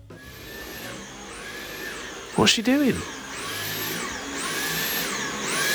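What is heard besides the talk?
vacuum cleaner running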